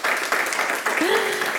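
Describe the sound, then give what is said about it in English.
An audience in Kensington applauds the panelists at the end of a panel session, a dense, continuous patter of many hands clapping, with a brief voice-like call rising out of the crowd near the end. “Give them a round of applause, everyone.”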